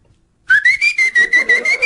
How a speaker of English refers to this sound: he ran up here and whistled his name on the mic